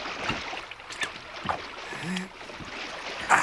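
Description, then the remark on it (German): Slow footsteps of a person in boxer shorts wading through the Waldstein swamp, each step a wet squelch and splash with bubbling in between, about five steps spread unevenly over a few seconds, with no talking. “In Boxershorts wartete Tim in den Waldsteiner Sumpf. Er schmatzte und blubberte bei jedem Schritt.”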